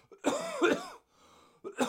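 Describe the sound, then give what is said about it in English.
A person clears their throat: two rough, gravelly rasps in quick succession, a short pause, then another harsh clearing starts. No speech. “Let me clear my throat.”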